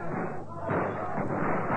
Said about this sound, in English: We've got so many men shooting and shouting, the frogs must think they're dealing with a disguised man of war